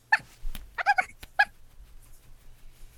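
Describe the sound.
A voice imitating a dog, giving a few short, yelping barks in quick bursts, a high-pitched yap first, then a quick double bark and one more, followed by quiet.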